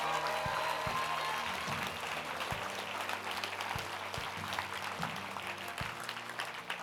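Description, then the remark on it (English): An audience claps steadily together, a dense, continuous patter of many hands that holds at an even, moderately loud level for several seconds without speech. “Come on, can we clap for those people?”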